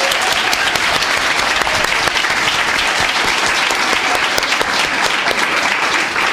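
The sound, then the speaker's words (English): An audience claps steadily for about six seconds, a dense, even wash of many hands with no pauses, loud throughout and with no voices standing out. “Let's clap for everybody.”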